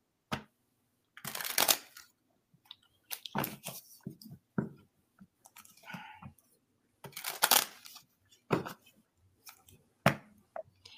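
Tarot cards being shuffled, a series of crisp riffling bursts and soft slaps with short pauses between, repeated irregularly over several seconds with no talking.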